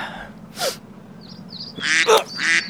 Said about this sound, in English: That fucking duck. Oh, shit, there it is.